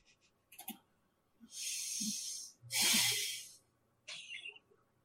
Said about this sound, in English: Wow, we don't even get a sigh. We just get a breathing.